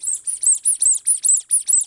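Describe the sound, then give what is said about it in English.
A slightly broken orange egg-shaped squeaky toy squeaks about nine times in quick, even succession, each squeak high, thin and a bit raspy, with no voices. “And this kind of squeaks a little bit. It's a little bit broken, but it kind of makes a little bit of a noise.”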